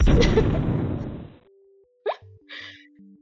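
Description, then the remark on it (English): A loud, rumbling explosion effect bursts out and fades over about a second, followed by a few short, quieter electronic blips and chirps. “Main course news explosion.”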